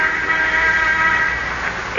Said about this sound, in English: Until shortly before noon, the sound of the inter-office phone arouses him.